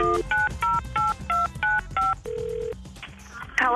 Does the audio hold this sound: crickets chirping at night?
no